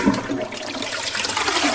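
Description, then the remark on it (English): A toilet flushes with a loud, steady rush of water that fills the whole moment, continuous with no voices over it. “Okay, when we do our business and flush the toilet, where does the waste go?”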